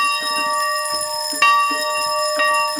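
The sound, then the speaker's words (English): A hand-rung school bell clangs repeatedly in an uneven rhythm, its bright metallic tone ringing out loudly and sustaining between strikes, with faint crowd murmur beneath. A woman rings it for four minutes from a bell platform in the courtyard of Mobile County Training School in Africatown, surrounded by hundreds of well-wishers, to commemorate the legacy of slavery. “ringing the school's bell”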